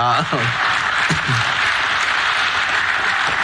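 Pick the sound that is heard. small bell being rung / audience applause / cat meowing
audience applause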